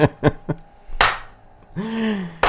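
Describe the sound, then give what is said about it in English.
A few sparse, uneven hand claps, three quick ones then a louder single clap, followed by a drawn-out, falling vocal cheer, as someone mimics the tiny, unenthusiastic crowd of about five people at late-night talk shows like Jimmy Fallon's and Jimmy Kimmel's, filmed with no live audience. “Like, part of those shows are the audience clapping and laughing about it.”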